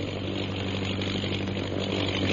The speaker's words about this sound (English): Listen. The plane. It's coming back.